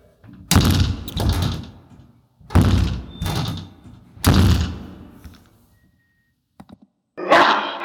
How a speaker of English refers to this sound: But when I go inside, I shut the door.